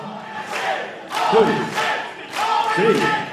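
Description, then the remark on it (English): A large Japanese wrestling crowd chants "This is awesome" in unison, loud rhythmic shouts rising and falling in repeated bursts about a second and a half apart, filling the arena with no single voice standing out. “But you know, I mean, if you're going to get a crowd of Japanese people shouting, "This is awesome," then it's going to be.”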